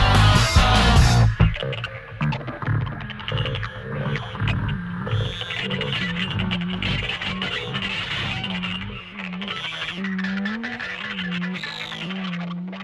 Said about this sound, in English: believe it or not, that wasn't my internet connection. That was actually how they finished the song.